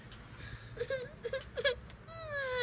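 A puppy just given as a gift whimpers in a few short, high, squeaky bursts, then lets out a longer, wavering whine, over a low rumble of background noise.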